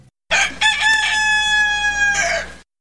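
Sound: rooster crowing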